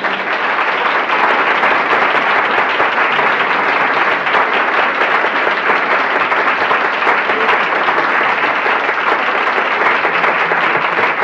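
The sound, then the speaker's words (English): Loud, sustained applause from an audience at Stanford after a talk, a dense wash of many hands clapping steadily at an even level for the whole stretch with no voices standing out. “And if you feel, as I do, about the quality of the talk we've just heard, I would like you to indicate through your applause level whether that is...”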